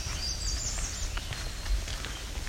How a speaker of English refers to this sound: As you can hear, this place is loaded with black-throated green warblers.